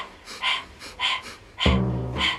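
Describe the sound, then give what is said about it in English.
Rapid, breathy panting in a Breath of Fire breathing exercise, tongue out, panting like a dog and focusing on the exhale: quick rhythmic exhales, four or five bursts in a couple of seconds, with a low voiced hum or tone entering partway through. “Or you can stick your tongue out of the mouth, pant like a dog, focusing on the exhale.”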